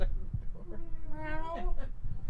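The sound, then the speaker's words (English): A single drawn-out meow from a very large cat, low and somewhat strained, rising and bending in pitch over about a second, against a faint background rumble. “We have a meow.”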